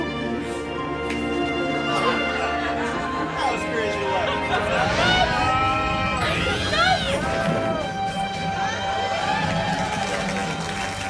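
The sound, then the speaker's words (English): A studio audience erupts in sustained applause mixed with excited whoops and overlapping shouting voices, a loud, dense crowd roar that holds steady for about eleven seconds. “Studio audience applauding.”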